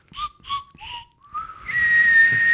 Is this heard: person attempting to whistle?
yes